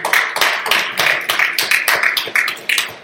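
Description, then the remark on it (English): An audience bursts into steady, loud applause at the announcement that Anchor Students will now meet every Thursday night, many hands clapping in a dense, continuous patter, with some cheering voices mixed in throughout the three seconds. “Yeah, so let's go ahead and cheer there.”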